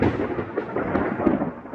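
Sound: thunder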